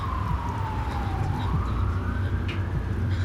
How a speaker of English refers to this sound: the sirens in the distance increased her paranoia.